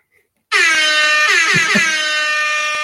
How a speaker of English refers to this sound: I googled reggae air horn.